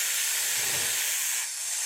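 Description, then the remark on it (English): Snakes hiss in a steady, breathy stream with no pauses, bright and airy, holding fairly loud for about two seconds with only a slight dip near the end. No one speaks. “Do you hear their eager hisses? They yearn for you.”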